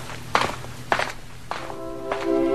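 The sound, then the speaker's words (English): Four footsteps of Wonder Woman moving from bed to bed among children, at a slow, even pace, each a soft thud with a brief scuff, over a steady low hum; no one speaks. “And as Wonder Woman moves from bed to bed, the sad little faces light up at the sight of their famous visitor.”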